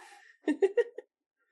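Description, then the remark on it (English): A dog whimpers in a quick run of three or four short, breathy, high-pitched whines, followed by silence. No one is speaking. “I think your dog agrees.”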